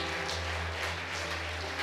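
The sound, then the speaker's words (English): A church audience clapping their hands in worship, a dense, steady wash of applause that carries a loose rhythmic pulse, over a constant low electrical hum, with no clear speech. “Clap your hands.”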